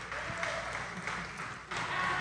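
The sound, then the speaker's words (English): An audience in the back seats claps steadily for a couple of seconds, a dense wash of applause that sounds fairly quiet, with no voices standing out over it. “We got a lot of people that are, give us a round of applause in the back, just in the back.”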